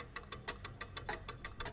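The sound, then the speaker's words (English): A ten-second countdown timer ticks in a fast, steady rhythm, crisp sharp clicks repeating several times a second over a low background hum, with no voices. “So I'm going to give you like a 10-second countdown.”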